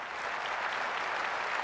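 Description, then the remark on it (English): An NRA crowd applauds and cheers in a dense, steady roar of clapping that holds at an even, fairly loud level throughout, with no speech on top. “It's no surprise that an NRA crowd cheered.”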